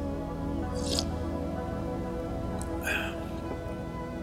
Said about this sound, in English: But, now I guess I can say, let me get a sip of my coffee here. I got a nice hot cup of coffee to sit down and explain myself to you today. So I'm gonna take a sip.